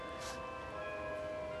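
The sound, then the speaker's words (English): Bells ring continuously in a long series, their bright overlapping tones sustained and steady at a fairly soft level, with no voices. “We'll just listen to those bells for a little bit. It's a long series of bells.”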